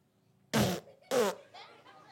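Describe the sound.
A child blows two loud raspberry bursts with the mouth, imitating a fart, each about a quarter-second long with a brief pause between, followed by quieter breathy trailing sounds.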